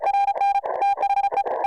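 High-speed ham radio Morse code traffic sent at 20 or 30 words per minute or faster: a steady, high-pitched tone keyed on and off in rapid dots and dashes, loud and continuous, with rough static-like bursts mixed between the beeps.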